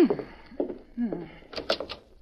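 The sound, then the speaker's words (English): Brief voices, then a short cluster of clattering, knocking sounds as a door is handled and pulled open for someone who is at the door, fairly loud. “Oh, there's someone at the door. I'll go.”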